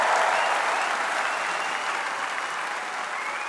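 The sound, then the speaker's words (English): Loud, sustained, thunderous applause from a large crowd at the Labour conference in Brighton after Mr. Corbyn reaches the podium, a dense steady roar of clapping that holds at an even level for the whole stretch without pause. “And there was thunderous applause that went on for a good 5 minutes after Mr. Corbyn got himself onto the podium.”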